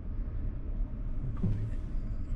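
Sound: car interior road rumble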